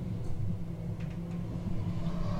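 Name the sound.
subway train riding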